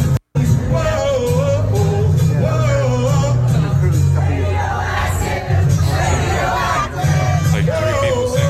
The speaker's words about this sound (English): Crowd going crazy, right, Benny?